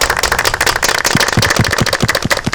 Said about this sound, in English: The delay is dope, dude. Yeah. That's I mean, it really makes it sound like there's a room full of people clapping.